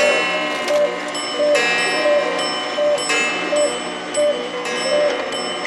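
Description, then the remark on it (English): Many clocks tick together in a steady, even rhythm, the ticks sharp against a faint sustained ringing tone. “My experiment worked. They're all exactly 25 minutes slow.”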